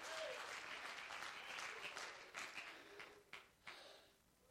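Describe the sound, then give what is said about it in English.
An audience claps their hands in a dense, steady burst of applause that holds for several seconds, with a few sharper individual claps standing out before it starts to thin out at the end. “Oh, somebody clap their hands to the Master of life.”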